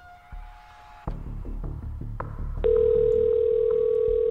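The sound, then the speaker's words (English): An outgoing phone call's ringing tone: a steady electronic tone cuts off, then a louder, sustained tone rings on over a low, rhythmic throbbing background, with no one answering or speaking. “Who lets their phone ring this many times?”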